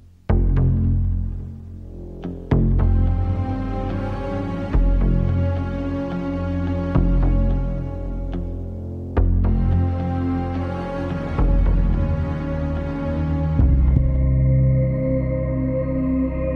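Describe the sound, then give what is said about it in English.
A dark, sustained orchestral TV theme song with a deep, throbbing low pulse like a heartbeat running throughout the whole piece beneath droning tones and occasional sharp accents, steady and fairly loud throughout with no voices. “What's most noticeable about the theme song is that heartbeat that's throughout the whole piece.”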